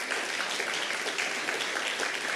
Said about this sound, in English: And yes, let's clap for that.